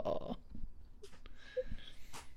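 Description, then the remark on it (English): A Labrador retriever dog makes a few short snorting, snuffling noises, soft breathy bursts with brief pauses between them, fairly quiet and with no one talking. “What kind of dog is he? He's a black lab.”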